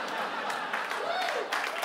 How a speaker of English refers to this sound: Yes, it's the first applause I've ever gotten in Canada. 30 to 40 people can't be wrong.